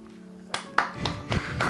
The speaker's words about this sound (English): Hey, let's have a round of applause if this is your first time listening to the show.